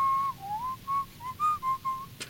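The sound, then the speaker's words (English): A single person whistles a short, wavering song melody, the pure tone sliding between a few nearby pitches in phrased notes, clear with no talking, ending with a brief click. “It'd be cool if we could whistle that together.”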